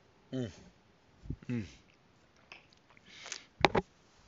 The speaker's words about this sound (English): Hold on, just sipping a little coffee here.